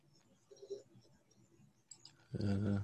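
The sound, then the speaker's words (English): Faint, quick, soft clicks of someone typing on a computer keyboard, followed by a brief loud, muffled burst of voice-like noise at the very end. “You heard him typing, I think. I heard him typing.”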